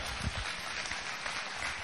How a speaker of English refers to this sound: Give God a hand clap of praise for him.